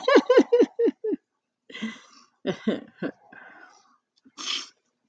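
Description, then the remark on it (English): A female pet dog, knocked out asleep, snoring loudly: a quick run of five rough, throaty snorts, then a few longer raspy breaths and wheezy snores with short pauses between them. No one speaks. “My pooch is really knocked out. She's making a lot of noise over there.”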